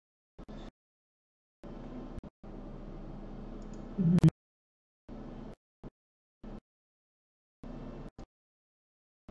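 Dice rattle and tumble in several short, irregular bursts of dry clatter, with one sharper knock partway through. The sound is fairly quiet, with silent gaps between bursts and no voices.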